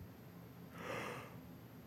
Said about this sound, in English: Nice yawn.